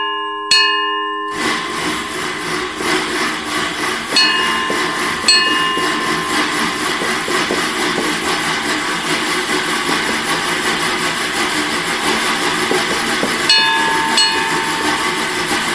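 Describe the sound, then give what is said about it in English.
A loud, steady mechanical clatter and rumble closely mimicking a moving train, with faint rhythmic clicks throughout, produced by a person working an almost 100-year-old sound-effect device with no moving parts, rather than a real locomotive. “let's talk about the train sounds”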